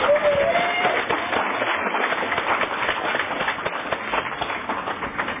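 A crowd applauds steadily, many hands clapping in a dense, continuous patter that stays fairly loud throughout and eases only slightly toward the end.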